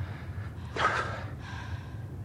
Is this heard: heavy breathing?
yes